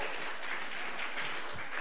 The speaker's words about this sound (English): Now, if you are clapping, do that better.